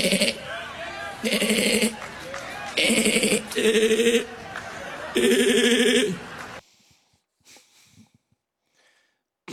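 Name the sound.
sheep bleating sound effect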